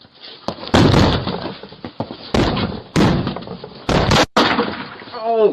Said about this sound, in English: he kind of kicked the door and pulled the trigger at the same time